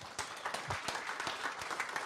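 An audience applauds, a dense wash of many hands clapping with sharp individual claps popping out irregularly, steady and moderately loud throughout.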